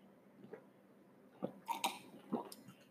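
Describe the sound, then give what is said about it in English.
A few quiet mouth sounds, soft slurping sips of coffee and a swallow or two, scattered irregularly over a few seconds with no talking. “Let me sip my coffee, sorry.”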